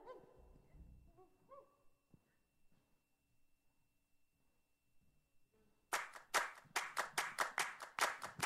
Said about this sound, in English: Can you guys clap for this?